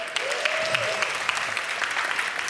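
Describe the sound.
A crowd claps steadily in a dense, continuous round of applause, with many overlapping hand claps forming a bright, even patter, and faint voices rising briefly beneath it.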